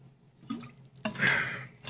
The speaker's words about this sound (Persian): بذار من آب بخورم الان جوش میارم.